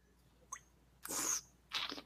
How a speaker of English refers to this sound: Yep, and kind of slurp it, pull that air over, right? You vaporize it so that kind of fills your whole nasal system, right?